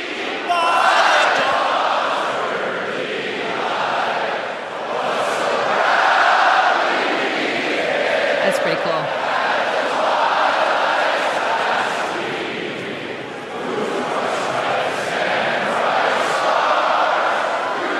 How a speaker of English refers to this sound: They panned all the players, and it's all these Edmonton fans are wearing their Oiler jerseys and singing along. It's crazy. Not planned. It just kind of happened.